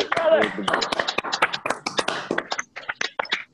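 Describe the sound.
Several people clap at once in an uneven, overlapping patter of sharp hand claps, with some voices mixed in beneath the applause before it thins out toward the end.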